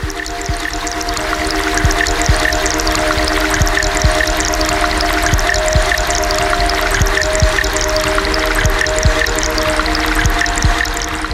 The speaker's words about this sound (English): So I feel really immersed in the water. The experience is from inside of it, and then it's kind of coming, like rushing at different speeds across my skin.